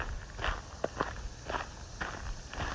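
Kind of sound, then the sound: ambience, footsteps walking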